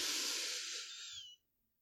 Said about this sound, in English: And we're going to take three deep breaths together. So take a deep breath in through your nose.